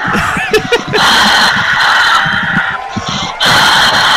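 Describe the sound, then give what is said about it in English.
On the radio show Radio Irregardless, a comedian, a phone guest, does his own clapping. Loud, steady applause is mixed with crowd cheering and high-pitched whoops. It runs nearly the whole time, with a short dip before the noise surges back at the end. “That's him doing his own clapping.”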